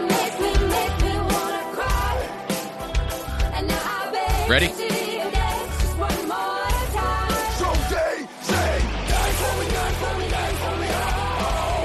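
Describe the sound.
A heavy metal cover song plays loudly with harsh screamed vocals over dense, driving guitars and pounding drums, briefly dropping out near the end before crashing back in; a voice speaks a single short word.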